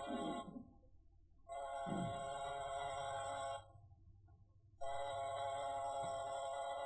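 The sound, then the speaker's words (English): An apartment door buzzer in Rose Bay sounds three times: a short first buzz, then two longer, steady, harsh electronic tones of about two seconds each, with a low hum underneath. “But just for the heck of it, I pressed the door buzzer.”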